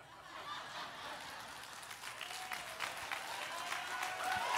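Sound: audience clapping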